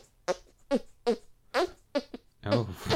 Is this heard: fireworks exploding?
no